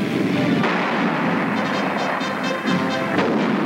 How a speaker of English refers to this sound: Now, United States warplanes have been built to absorb the terrific recoil of such a gun. And 75-millimeter cannon firing from the sky can and have sunk a destroyer.